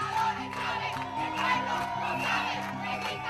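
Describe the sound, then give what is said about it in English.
Hundreds of student protesters on one of the biggest streets in Caracas, Venezuela, protesting the shutdown of RCTV, shout and chant together, "Chavez is a dictator, and the people know it": a loud, steady roar of many voices with rhythmic rises and falls as the chanting pulses on without pause. “Hundreds of students were out protesting down one of the biggest streets in Caracas, shouting, "Chavez is a dictator, and the people know it."”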